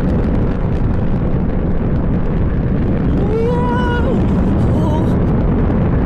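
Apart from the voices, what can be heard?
rocket engine roaring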